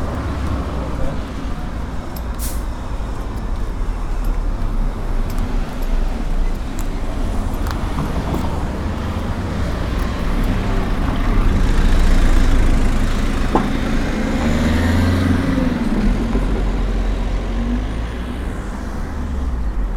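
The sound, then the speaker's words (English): Steady, dense road traffic with deep engine rumble throughout, as a van reverses slowly back up the busy road amid passing vehicles, its driver unable to fit under an 11-foot, 9-inch railway bridge; faint voices may murmur in the background. “And he's having to reverse back up the busy road, causing chaos.”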